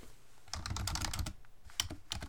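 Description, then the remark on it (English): Rapid typing on a computer keyboard, a dense run of sharp clicky keystrokes with a brief pause near the middle, then more scattered taps. “Your keyboard is very loud in my earphones.”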